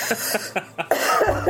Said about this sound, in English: Hold on, I just have to cough.